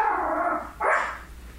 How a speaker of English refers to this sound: It's the dog. She barks when anybody leaves.